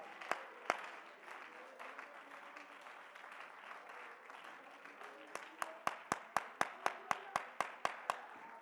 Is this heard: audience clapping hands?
yes